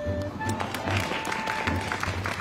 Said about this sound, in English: They're cheering you for stopping me.